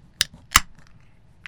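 A can of 11 Below beer cracked open: a sharp metallic click from the tab, then a louder pop a moment later, followed by a faint tick. No one speaks.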